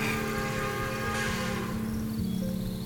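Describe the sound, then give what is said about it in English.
A distant train rumbles steadily, a low continuous drone with a faint tonal whine layered on top, holding for the whole stretch without pause and with no voices. “In the distance, a train can be heard.”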